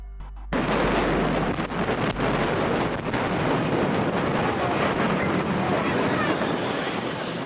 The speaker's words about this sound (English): At just before 2:30 p.m., the first of two massive explosions rocked the area.